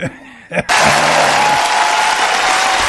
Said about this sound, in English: So that wasn't a big enough applause there, ladies and gentlemen, so we need to work on that.